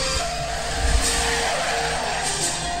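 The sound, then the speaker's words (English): A car tears off with its tires skidding and squealing, engine roaring loud in one continuous burst lasting a few seconds, with no voices. “So the court's on recess, and this fool gets in his car and books it.”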